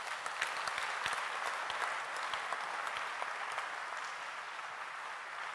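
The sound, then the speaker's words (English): A crowd claps for Isaiah at the speaker's call, a steady, dense, even wash of many hands with scattered sharper claps poking through. It holds at a fairly constant loudness throughout, with no voices. “As you are clapping, you are receiving the wisdom of Isaiah.”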